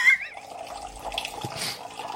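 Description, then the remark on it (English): Water streams steadily from a water dispenser being tested, running for a couple of seconds as a continuous splashing trickle with a slight gurgle. Moderately quiet. “Here you see me testing out our first water dispenser.”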